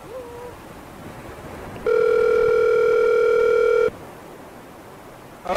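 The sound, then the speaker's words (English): A telephone dial tone while placing a phone call: one loud, steady electronic hum holding for about two seconds, preceded by a short faint rising beep and surrounded by quiet background hiss. “You hear that? Yo, phone. Beep, beep.”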